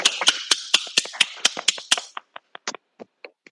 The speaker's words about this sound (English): Actually, just for fun, can we take ourselves off mute for just a moment and do an actual round of applause? You'll feel stupid in your own bedroom.